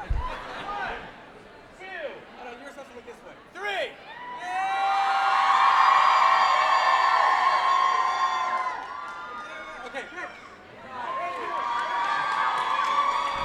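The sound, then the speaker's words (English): A large show audience, standing up and crowding into the middle for a giant audience selfie, cheers and whoops loudly, with excited shouting and chatter rising into a sustained roar that swells, dips briefly, then builds again. “And because this show is so much about social media, we're going to do a giant audience selfie right now.”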